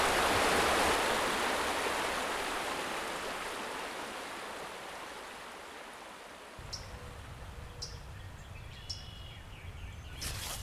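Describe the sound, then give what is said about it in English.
Steady rushing of flowing river water fills the scene, loud, with a few faint high chirps and soft clicks in the background toward the end, as someone crosses the river on foot. “How my first step was immediately in the river.”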